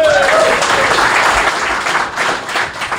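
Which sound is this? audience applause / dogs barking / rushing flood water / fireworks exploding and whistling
audience applause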